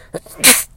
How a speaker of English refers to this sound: And I'm going to sneeze.